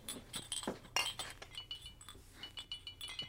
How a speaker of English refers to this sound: Load up. Here, put this cloth in between and don't break the glass jars. I'm being careful.